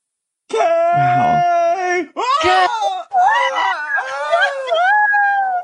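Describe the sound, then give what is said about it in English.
A voice imitates a guttural, open-mouthed scream: loud, drawn-out wailing cries that break into a few strained bursts over about five seconds, with no other speech. “Diane falling back and just like guttural, like open mouth scream”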